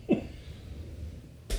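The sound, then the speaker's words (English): A single quick sneeze bursts out near the start, not loud. A low background hum follows, then a short breathy rush of noise at the end. “Oi, you sneezed.”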